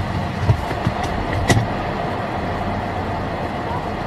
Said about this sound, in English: Hey, don't be hitting my car. What is wrong with you? Don't you be hitting my car.